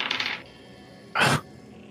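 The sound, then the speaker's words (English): A short clatter of dice tumbling across a hard tabletop, followed a moment later by a second, louder rattling roll, made for a perception check in a tabletop role-playing game. Crisp, with no talking. “Cheated by that dice. That's a 23.”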